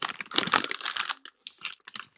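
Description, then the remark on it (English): Crinkly plastic rustling as a new packet of Dreamies cat treats is handled and opened, a dense run of sharp crackles, a brief pause, then more bursts of crinkling. No one speaks. “Let me open it. Do it. It's a new pack.”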